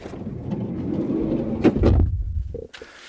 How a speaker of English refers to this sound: Then if we move to the rear passenger areas, then we get the lovely sliding doors.